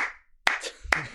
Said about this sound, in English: Slow clap. You peaked it every single time you clapped.